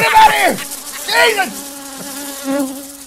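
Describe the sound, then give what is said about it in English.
A housefly buzzes steadily for about three seconds in the W4CY studio, its drone wavering and swooping in pitch with a few louder surges, and no voices. “do you ever get flies in the W4CY studio? Oh, they're all over here!”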